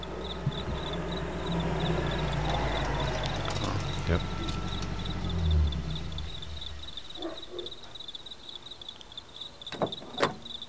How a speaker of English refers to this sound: Oh, well, I mean, I'll play you the intro here because I know what I thought. We'll hear a lot of those props. And then... crickets.